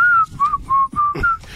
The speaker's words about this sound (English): You were whistling a happy tune. Yeah, I was.